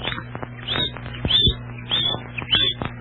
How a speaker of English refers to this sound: Well, of course, Chirpo. That's a smart bird.